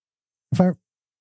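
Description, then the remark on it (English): A quick voiced mouth sound, about a quarter-second long, imitates soda fizzing. It is a single burst with a breathy hiss on top, followed by silence. “Okay, that's the fizzing.”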